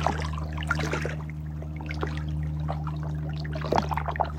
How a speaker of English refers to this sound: Feel the gentleness of the water's song.